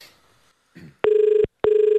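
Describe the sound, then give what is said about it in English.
An outgoing phone call's ringing tone, from a call made on Tuesday to organise a dinner: two loud, buzzy, steady mid-pitched rings with a short gap between them, preceded by a faint rustle and a brief soft thump. “And this is the call we made on Tuesday trying to organise a dinner.”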